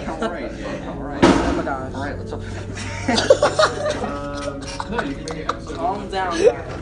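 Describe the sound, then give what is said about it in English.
A chair is slammed down hard once, a sharp, loud crash near the start, followed by excited voices talking and chuckling over a low background hum. “Put down the chair.”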